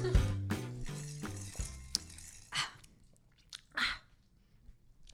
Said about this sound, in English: She's choking currently. Sorry. She's doing it again.